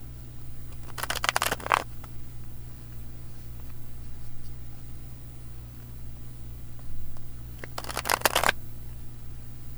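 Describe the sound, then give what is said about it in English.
Two bursts of Osho Zen Tarot guidance cards being shuffled, each a quick flurry of crisp riffling lasting under a second, separated by a long stretch of quiet with a steady low hum underneath. “I am going to take a moment to bless and ground the cards and energy for the highest good for all.”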